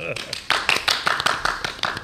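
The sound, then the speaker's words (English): A quick, irregular run of sharp, fairly loud hand claps as someone swats at a mosquito, with faint voices murmuring underneath. “Mosquito. I thought we were just applauding.”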